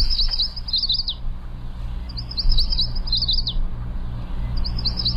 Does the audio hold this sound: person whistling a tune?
no